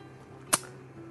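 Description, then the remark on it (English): A door shuts once with a sharp, sudden, brief knock, followed by a low steady hum. “Please close the door.”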